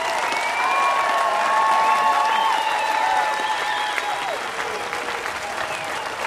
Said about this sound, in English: The crowd definitely into it and calling for an encore.